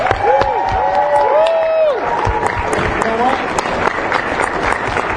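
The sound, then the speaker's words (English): A crowd at an expo bursts into sustained applause for the volunteers, dense clapping mixed with loud cheers and high whoops and whistles that rise and fall over several seconds. “And also, let's have one last round of applause for the volunteers, because they've done a great job.”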